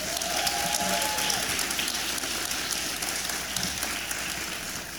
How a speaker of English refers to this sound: And please help me give a round of applause and congratulations to all of tonight's nominees.